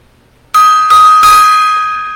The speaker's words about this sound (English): All right. A little gong time there.